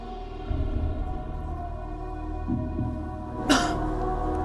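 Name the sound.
man coughing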